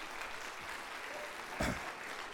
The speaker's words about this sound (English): So let's give him a round of applause as well.